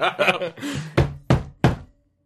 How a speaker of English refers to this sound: Hagrax just knocks on the door.